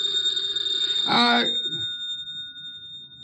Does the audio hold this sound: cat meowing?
no